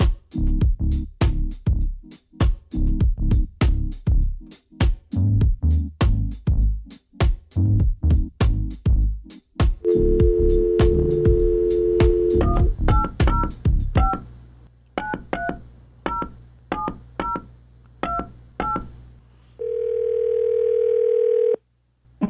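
After a thumping rhythmic beat, a steady phone dial tone hums, then a quick run of touch-tone beeps, each a clear two-note chirp, ending in a sustained ringing tone, as a call is placed to a guest on the show All Things 805. No one speaks.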